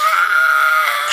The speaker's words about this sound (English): I'm yelling while I do it.